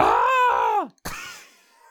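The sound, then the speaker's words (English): A video game character's death scream when the player falls: a loud, sustained voiced cry that holds steady, then drops sharply in pitch and cuts off, followed by a brief pause and a short noisy burst fading away. “It also has a great death scream if you fall.”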